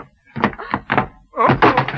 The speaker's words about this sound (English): I was not ahead of the ball. I fell over the coffee table.